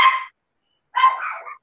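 small dog barking

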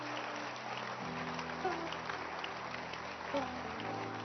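audience clapping hands

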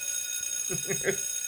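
bell being hit

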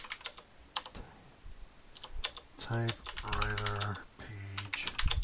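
typewriter keys typing

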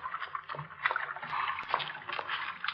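water splashing

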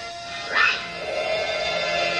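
puppy whimpering and yipping

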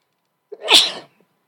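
a person sneezing

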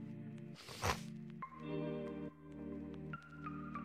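handling a water bottle

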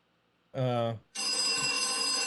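telephone bell ringing

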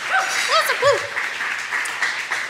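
audience round of applause

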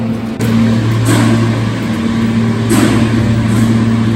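subway train running

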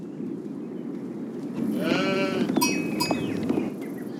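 sheep bleating

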